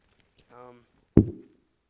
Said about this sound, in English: He's knocking, y'all.